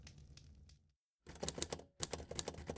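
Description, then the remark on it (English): A typewriter clatters in rapid bursts of sharp key strikes as a narrative is typed up, pausing briefly before resuming with a bell-like ding and more brisk typing; no one speaks. “I made quick work at my typewriter, threading together the terrible narrative from the very beginning.”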